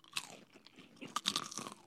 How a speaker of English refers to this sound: So we'll crunch it, and then we'll eat.